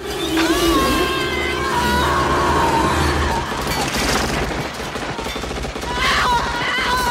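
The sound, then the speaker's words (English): Rapid bursts of machine gun fire crackle through a loud, dense film action scene mix with a roaring engine and booming effects, the shots rattling steadily in the middle of the scene. “She grabs the machine gun as they pass each other and...”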